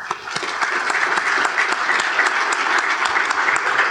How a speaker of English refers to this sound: Well, excellent. Let's have a round of applause for our panel here.